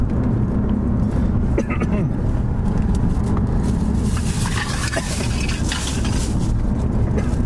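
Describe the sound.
Steady, loud road rumble from inside a moving car, a dense low drone that holds constant throughout, with faint murmuring voices and occasional brief clicks on top.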